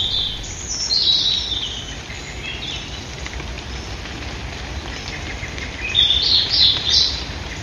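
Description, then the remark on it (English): European robin and Eurasian blackbird song recorded in Ireland: bright, warbling phrases come in two short bursts, early and near the end, over a steady background hiss like light rain, with no voices. “Gino tells me we just heard a European robin and a Eurasian blackbird.”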